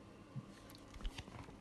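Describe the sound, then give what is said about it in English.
Soft sipping and swallowing of milk from a cup: a few small wet mouth clicks and gulps over about a second and a half, quiet and without any talking. “As I'm drinking out of the Junky Clothing Exchange, 960 South Virginia Street, zombie crawl cup that I happen to have my milk in from lunch.”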